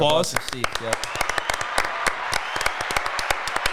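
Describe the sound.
A round of applause giving credit to helpers of a team that won a state championship: many hands clapping in a dense, irregular patter that holds steady for several seconds, with a brief voice heard at the very start.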